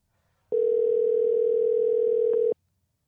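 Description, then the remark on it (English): A phone ringing on an outgoing call placed from a blocked number: one steady, mid-pitched ringback tone that holds evenly for about two seconds, then cuts off, with no talking. “Now, I'm calling from a block number.”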